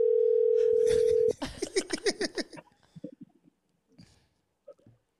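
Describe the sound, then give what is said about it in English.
A loud, steady phone dial tone holds a single mid-pitched note for over a second, then cuts off abruptly as excited voices break in, with a few short scattered bursts afterward. “What you doing? You calling him?”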